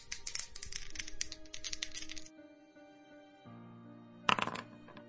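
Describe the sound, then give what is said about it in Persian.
Dice rattle and clatter across a wooden backgammon board in a busy two-second flurry of clicks, then after a quiet pause a short sharp burst of clacks as they land, over a faint steady hum. “تو تاس می‌ریزی یا من؟ تو بریز.”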